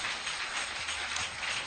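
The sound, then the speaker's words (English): Steady, dense audience clapping at a Fasting and Prayer 2023 gathering, a continuous wash of many overlapping hand claps at an even, fairly loud level without pauses. No voices are heard. “Are you clapping?”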